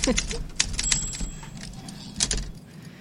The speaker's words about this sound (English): Okay, take it. Give me some typewriter.